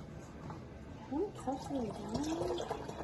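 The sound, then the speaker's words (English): Two cups of lemon juice pour steadily into a container with a continuous splashing gurgle, for making a gallon of lemonade, while a faint voice murmurs over it partway through. “Two more cups of lemon juice. Pour it in there.”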